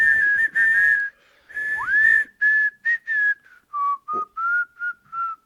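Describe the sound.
A person whistles a simple, bouncy nursery-rhyme melody while walking down a street, clear, with short separated notes and a brief gliding pitch, no voices or other sounds around it.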